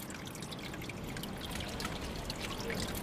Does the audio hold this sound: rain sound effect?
no